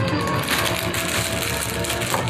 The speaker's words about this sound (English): Sounds like you're rustling a bag of Skittles against the mic. Because he is rustling a bag of Skittles against the mic,